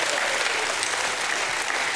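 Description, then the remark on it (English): A crowd breaks into sustained applause as a hand clap of praise, a dense steady wash of many hands clapping at once, fairly loud and even throughout with no voices standing out. “Somebody in the house, give him a hand clap and a shout of praise.”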